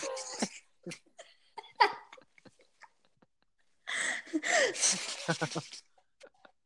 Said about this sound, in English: This time, don't interrupt me by blowing your nose over me.